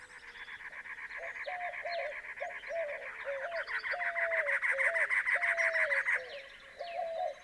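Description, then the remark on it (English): At dawn at Sam Nail Ranch, an abandoned ranch site among cottonwood trees in the western section of a park, cactus wrens give a harsh, mechanical chirring in rapid, steady pulses for several seconds, loud, while white-winged doves coo and other birds call softly underneath in a busy dawn chorus. “The mechanical chirring of cactus wrens dominate the soundscape.”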